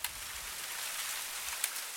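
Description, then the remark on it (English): A trickle of running water flowing among clumps of shaggy brown palms, heard as a steady, bright, hissing wash with a couple of faint drip-like ticks. No one speaks. “A trickle of water.”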